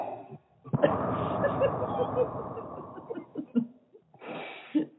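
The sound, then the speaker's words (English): A person makes loud, raspy heavy breathing, a long drawn-out breath followed by a few shorter huffs, imitating the muffled breathing of someone wearing a mask. “I appreciate the attempt at the heavy breathing though. That did sound like you had a mask on, yes.”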